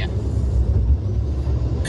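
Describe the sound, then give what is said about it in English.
A steady, low rumble fills the inside of a moving car, a constant droning hum with no breaks, fairly loud throughout. “Another edition from the car.”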